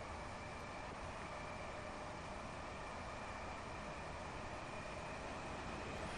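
Two Southeastern trains rush past each other in southeastern London, a steady, loud roar of wheels and rushing air that holds at the same level throughout, with no voices.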